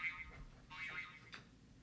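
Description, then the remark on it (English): A faint, high-pitched electronic stopwatch alarm goes off in a few short, warbling bursts, with no one talking over it. “My stopwatch alarm.”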